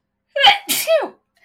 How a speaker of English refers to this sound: Bless you. Bless you. That's staying in the podcast. You're welcome. Bless you. You're welcome to everybody. That is my sneeze. I sometimes do about 8 of them.